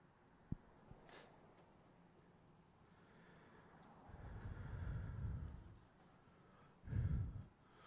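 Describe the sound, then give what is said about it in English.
A car engine cranks in two low, grinding attempts as someone tries to start a car and fails, a longer one followed by a shorter burst, neither catching. It is outdoors as the weather turns sunny, with faint background sound otherwise and no talking. “As a reminder to those in vehicles, just start your car every now and then, because I just heard somebody try and it didn't work.”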